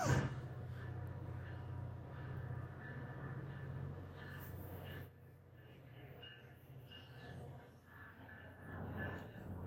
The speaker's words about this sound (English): sorry guys, this is another fucking train.